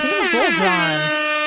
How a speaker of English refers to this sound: Who the fuck made this duck call famous? I mean, like.